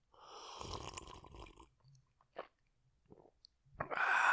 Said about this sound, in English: With me again is my special guest. My special guest is a small sip of whiskey. Here's some input from my special guest.